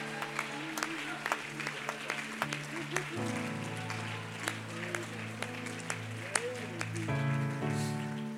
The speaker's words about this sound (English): How many believe God can heal everything? I want you to clap your hands and shout about that. Shout about that. Hallelujah!